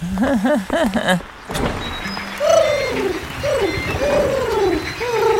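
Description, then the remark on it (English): Voices imitate birds cooing, with several warbling, wavering coos up close, followed by a run of higher sliding hoots that rise and fall in quick succession. “Coo, coo, coo, we're birds.”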